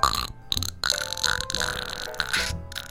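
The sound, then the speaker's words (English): A series of loud, sputtering fart noises in quick succession, broken by a few short pauses, each burst buzzy and wet-sounding, with no talking. “It's going to be news. Okay. That's funny. Uh-huh. But with farts.”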